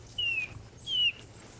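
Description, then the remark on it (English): A bird imitator in the Baie de Somme whistles an imitation of a bullfinch call: two soft, pure, slightly falling piping notes about half a second apart, with faint high chirping and a low rumble in the background. “That's the call of the bullfinch.”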